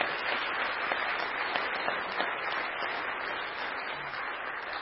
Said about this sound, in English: Can we just give them a round of applause for all that they do?